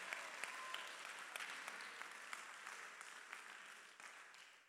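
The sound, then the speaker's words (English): A standing audience claps together in a sustained, dense burst of applause that holds steady for several seconds before easing off slightly at the end, with no talking over it. “Oh, he's just talking crazy so people stand up and clap.”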